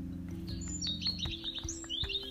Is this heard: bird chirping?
yes